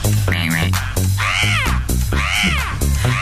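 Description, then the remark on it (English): Harsh, croaking crow caws repeat loudly, a few drawn-out rising-and-falling calls over a steady, pulsing low drone, with no talking. “That's a crow.”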